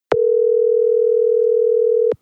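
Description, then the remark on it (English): A steady, loud telephone dial tone hums without a break for about two seconds, starting and stopping with faint clicks, with no voices. “So let's get Everett on the phone.”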